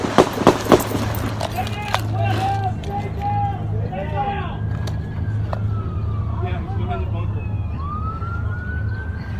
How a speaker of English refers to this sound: And here is the audio. It's black. It's a black screen, white writing. And it mentions the Bernie Sanders supporter who opened fire. And you'll hear some of the gunshots.